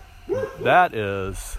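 A dog barks and yips a few times in quick succession, fairly loud, with strained, whining harmonics between barks and no talking.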